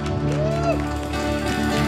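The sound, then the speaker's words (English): A church audience gives a hand clap of praise during a service, a dense, continuous patter of many hands, while sustained keyboard or organ tones from the worship team hold underneath. “Come on, give him a hand clap of praise, would you, all over this building.”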